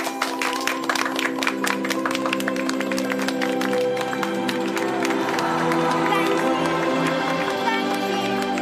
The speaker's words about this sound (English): Say quick that you believe. If you believe, clap your hands.